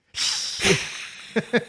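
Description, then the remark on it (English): A person makes a long, steady hissing sound like a snake, a bright airy hiss lasting over a second, broken by a few short voiced bursts toward the end. “I'm a snake. I'm a slithery little snake.”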